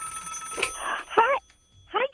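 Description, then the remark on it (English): A telephone rings with a steady electronic tone as a listener's call is connected on radio station KAAM 770 in Texas, heard briefly alongside short bursts of a person's voice at moderate volume. “Before we get to do anything else, or before we want to do anything else, we have one of our most precious listeners on the phone. Let's send her on through.”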